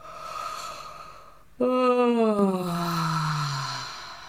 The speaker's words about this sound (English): And letting out another yawn, and a sound.